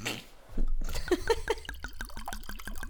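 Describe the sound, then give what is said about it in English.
Wine glugs from a bottle into a glass, a quick run of repeated gurgles that rise in pitch as the glass fills, preceded by a brief clink and rustle. “Do you want to pour or shall I? No, oh, you've got it. Okay, I'll pour.”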